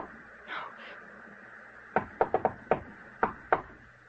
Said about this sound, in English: Someone knocked, Edith. Open the door.